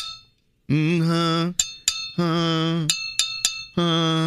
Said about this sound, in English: So I brought things in that create notes. Okay. Love this. And I hit them with my wedding ring. Okay. This is a a Moscow Mule cup.